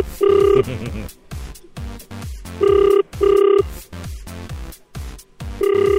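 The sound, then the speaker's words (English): An outgoing call from Agriculture SA rings out: loud, buzzy ringback tones in short paired bursts, repeating a few times, with voices murmuring faintly underneath between the rings. “All right, it's ringing.”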